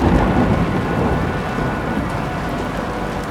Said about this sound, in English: The heavy rain had started soon after Hobbs and Woodward had gotten back into the car. The thunderous assault of the water hitting the roof had been so loud, Louise had covered her ears. Luckily, in the last few minutes, things had calmed down a bit.